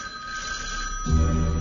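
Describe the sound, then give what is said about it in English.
A telephone rings steadily with bright, sustained electronic tones as a radio record show's phone jingle opening the hour, and near the end a louder, deeper musical tone swells in underneath, like the start of a short jingle. “Okay, we're going to catch up now because we're going to play the hour three phone jingle that always opens hour number two.”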